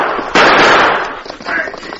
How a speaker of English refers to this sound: Thunder's startled cry was punctuated by the fire of the masked man's Colts.